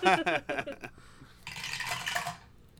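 A short burst of voice gives way to a bright, rattling clatter of dice tumbling through a cheap dice tower for an initiative roll of 14, lasting about a second before it stops abruptly.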